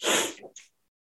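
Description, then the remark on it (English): A loud, harsh cough bursts out, then a short second huff follows before silence. No talking is heard. “Yeah, sorry, coughing.”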